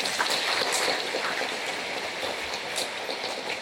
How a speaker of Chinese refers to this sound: 再次祝贺我们今天在弥撒礼仪中新被派遣的20名中文堂区、英文堂区圣乐宣读员，以掌声祝贺他们。